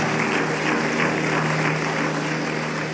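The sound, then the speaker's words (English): An audience in the second sanctuary at Hungry Gen applauds the Lord in a steady, dense wash of clapping that holds at an even, fairly loud level for the whole stretch, with a low hum underneath and no voices. “In the second sanctuary, give the Lord a round of applause.”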